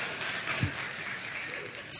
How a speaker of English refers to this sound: Born with a head of dark hair and 10 pounds, 2 ounces. Wow. Woohoo. Yeah, all you ladies can clap for that.